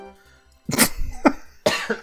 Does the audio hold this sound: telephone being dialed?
no